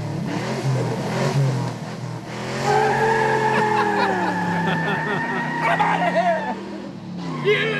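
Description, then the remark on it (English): A car pulls off after being jump-started with a police officer's jump pack, peeling out with a long, loud tire squeal, the screech holding steady tones over a revving engine before fading near the end. “Somebody caught it on audio. I knew there were people out there. This is Luke leaving.”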